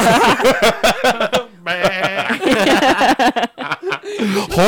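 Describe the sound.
A voice breaks into a wavering, bleating imitation of a sheep, loud, wedged between bursts of excited talking and chuckling.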